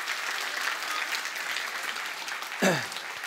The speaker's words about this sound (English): Is your mom a changemaker? Yes. Can you give a round of applause for your mom?